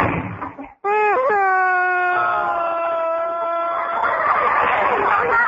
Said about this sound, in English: Don't cry, honey. I was stood up, too.